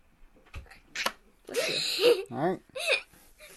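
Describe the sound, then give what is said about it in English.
A person sneezes loudly, with a few quick sharp intakes of breath leading up to a voiced, drawn-out burst and trailing vocal sounds. “Bless you.”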